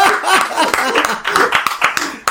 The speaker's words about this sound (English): Yes! Thunderous applause.